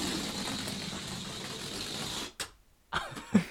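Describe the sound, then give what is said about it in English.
A New Year's balloon is let go and sputters and buzzes loudly as its air rushes out for a little over two seconds, then cuts off abruptly as it smacks into a wall, followed by a few short soft bumps and rustles. “We have balloons because it's the New Year's. It's New Year's right now. Here, I'll let mine go.”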